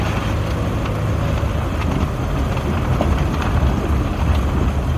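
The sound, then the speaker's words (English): Steady, loud road rumble of a car driving, with deep low engine and tire noise and a constant wash of wind, continuous with no voices. “The car behind us is kind of scaring me how fast they're going.”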